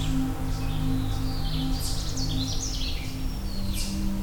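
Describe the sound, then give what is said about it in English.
A Canada warbler sings a quick, jumbled burst of high chirping notes, set against a steady low hum and faint insect-like background noise. “I think I've got a Canada warbler.”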